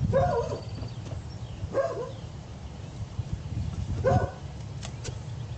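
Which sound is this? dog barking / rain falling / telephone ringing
dog barking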